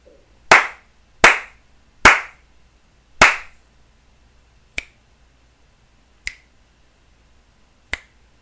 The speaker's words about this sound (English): What was that, 4 and 3 snaps? Did I read that right? 4 slaps. Yeah. 3 snaps.